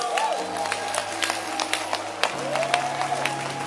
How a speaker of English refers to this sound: So let's rise to our feet and clap our hands for fathers.